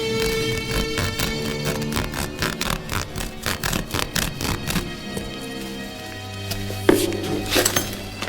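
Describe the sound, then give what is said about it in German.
A Fuchsschwanz handsaw rasps through material in a quick run of rhythmic back-and-forth strokes, then stops; a low hum and a single metallic clink follow at the end. “Ist was zum Zerschneiden da? Ich habe einen Fuchsschwanz.”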